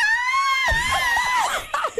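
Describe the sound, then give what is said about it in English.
A person lets out a loud, sustained, high-pitched theatrical scream of mock terror, as if thousands of orcs were attacking, wavering in pitch before breaking into shaky gasps near the end. “share with Jesse exactly how you would scream if thousands of orcs were attacking you”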